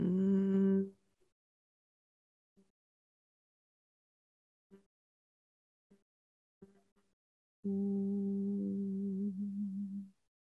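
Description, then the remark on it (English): Humming bee breathing practice: a steady, low-pitched hummed exhale trails off at the start, followed by several seconds of near silence with a few faint soft breaths, then a long, even humming exhale held for a couple of seconds before fading. “And you just exhale again, for this time for as long as you possibly can with the humming sound.”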